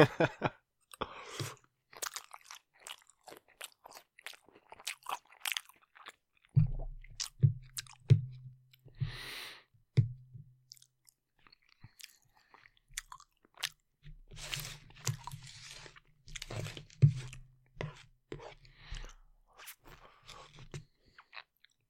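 Loud crunching and chewing on a crisp snack, with a rapid run of irregular crunchy bites and some low, muffled mouth noise in between. No one speaks.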